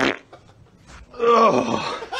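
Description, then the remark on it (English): A small, wet, juicy fart sound sputters for about a second, with a slightly sliding pitch, after a brief quieter lead-in with soft breathy noise. “Yeah, it was like the twinkish little slide fart.”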